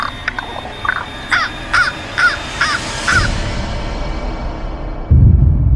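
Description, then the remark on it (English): A raven caws repeatedly, about six harsh, evenly spaced calls over roughly three seconds, followed by a low rumbling background that swells louder near the end. “As he points his hands towards the window, a raven flies in, leaving the man terrified.”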